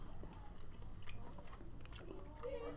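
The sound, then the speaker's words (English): Wet biting and chewing of escargot (snails), soft crunches and squelches repeating steadily over a few seconds, with faint low background noise and no talking. “Also known as escargot, which is supposed to be a delicacy. Let's just fucking eat this shit.”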